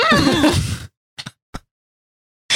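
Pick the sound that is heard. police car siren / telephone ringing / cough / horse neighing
horse neighing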